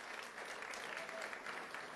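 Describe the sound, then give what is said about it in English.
A crowd at an evening event claps steadily for Changing Hands Bookstore, a dense wash of overlapping hand claps at even loudness throughout, with no one speaking over it. “They will be yes, give them applause, please.”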